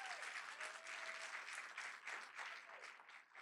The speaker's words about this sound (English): Let's give our pastors a big round of applause.